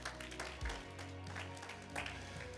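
An audience gives the Lord a hand clap of praise, a dense, sustained patter of many hands over a low, steady musical drone, fairly soft overall with faint voices mixed in.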